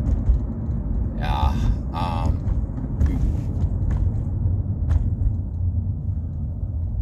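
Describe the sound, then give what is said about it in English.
A school bus rumbles past, a steady heavy engine drone with two short, high whining squeals early on before the rumble settles and continues. “School bus.”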